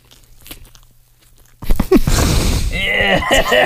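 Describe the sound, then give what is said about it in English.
After a near-silent moment, loud, wet chewing of soft, sticky Peeps marshmallow candy by a man begins, squishy and smacking, with some murmured vocal sounds mixed in toward the end. “It just the sound of him chewing the peeps are so gross.”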